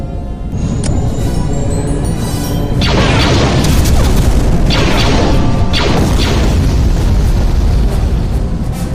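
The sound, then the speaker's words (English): A loud, sustained explosion in a base hangar, set off from within the base, booms and rumbles with a heavy low-end roar and several sharp bursts layered over it, echoing; no one speaks. “Captain, I've detected an explosion in the base hangar.”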